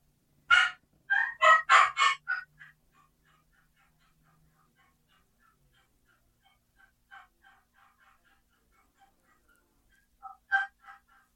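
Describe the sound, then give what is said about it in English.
An excited wild turkey hen yelp played on a turkey call: a loud, rapid run of raspy notes, then a few softer scattered yelps, and one final short burst near the end. “Here's an excited hen yelp.”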